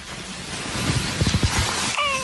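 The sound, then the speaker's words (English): A cat meows along with its owner singing: a single short meow rises near the end, over a steady hissing background, with faint low mumbling sounds just before it. “the one where the cat sings Twinkle Twinkle Little Star with his owner”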